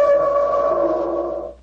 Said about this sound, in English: The instrument sounds exactly like an elephant trumpeting.